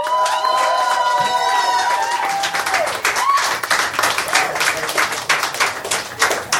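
An audience breaks into loud, sustained applause to pick a favorite entry, a dense crackle of many hands clapping at once, with high whoops and cheers riding over it during the first few seconds.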